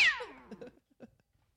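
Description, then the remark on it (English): A cat gives one fairly loud meow that starts high and slides downward in pitch, trailing off into a few faint, soft sounds and then quiet. “Dude, I'm allergic to cats. It's, there you are.”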